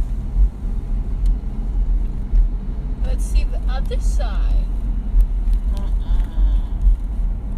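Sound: car driving slowly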